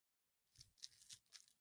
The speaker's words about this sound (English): Kyrie Irving, excuse me, I have to clear my throat real quick.